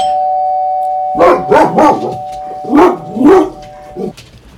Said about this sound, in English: This is what happens when you're doing it live and a package is delivered. Hello, Mr. Postman. Hello, dogs barking.